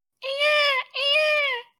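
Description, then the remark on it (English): A person imitates bird-of-paradise calls with their voice as Foley: two drawn-out, reedy, mid-pitched cries of similar length, separated by a brief gap, fairly loud with no other talking. “And then can I get like the trop birds of paradise one more time? The what? The birds of paradise. You know the bird sounds you do.”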